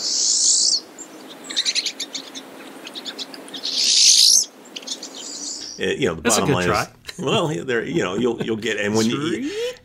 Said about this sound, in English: And boy, all of a sudden you just hear that and it's just an immediate, pine siskin, they're here, you know, because you know.